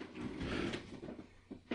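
A bed creaks with a drawn-out, low groaning rub, then two short creaks near the end. Fairly quiet, with no voices.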